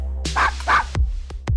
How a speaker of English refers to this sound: Then I asked him, I said, should I go into work, Chuy? And then he had barked twice.